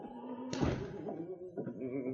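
An office door opens with a heavy thunk, then swings shut with a second solid thud about a second later, over a faint low murmur of voices.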